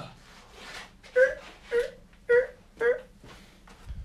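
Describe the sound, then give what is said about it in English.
A voice imitates a creaking door opening: four drawn-out, squeaky moaning tones in a steady rhythm, fairly loud, with faint background murmur between them. “Opening door.”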